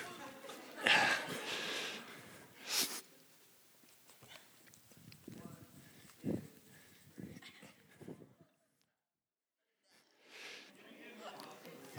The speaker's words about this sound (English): I'm about to knock this out. 100 consecutive push-ups. I should have worn something. No, you need to hear me breathing. Here we go.